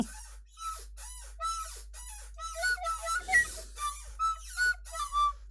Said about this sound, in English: Do you hear that? Not the chair. I could get a thing going with the whistle and the chair.